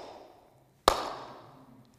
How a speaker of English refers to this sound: It's called the dreaded slow hand clap, okay? And every cricket batsman dreads it. It's derisive. It's, get a move on.